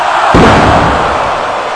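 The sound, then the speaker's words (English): A single heavy slam as wrestler Kane, having climbed up behind Abyss on the turnbuckle, drives him onto the wrestling mat with a super backdrop, landing with a deep, booming thud, set against a constant roar of crowd noise that carries on afterward. “Kane climbed up behind him and slammed him with a super backdrop.”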